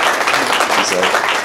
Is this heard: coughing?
no